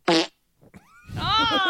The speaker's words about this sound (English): It was a fart.